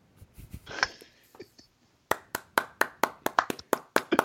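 One person claps for themselves steadily, about a dozen sharp, bright claps in an even rhythm, after a brief stretch of breathy vocal noise at the start.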